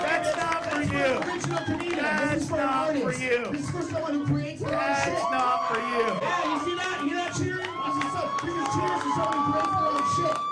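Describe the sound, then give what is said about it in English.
A large crowd cheers and shouts continuously after a performance, many voices overlapping into a loud, dense roar with occasional rising whoops standing out above the din. “You're not cheering. Those are cheers.”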